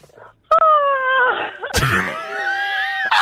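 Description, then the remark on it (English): A person lets out a long, drawn-out yawn, voiced and moaning as the pitch slides downward, with a breathy gasp partway through. It sounds loud, and could be an exaggerated or imitated yawn. “These people, have they never yawned before?”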